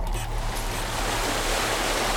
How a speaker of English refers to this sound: Her husband walks forward to join her, and together, they stare at the rolling waves.